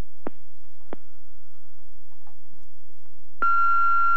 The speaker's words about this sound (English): Now, please wait for the beep.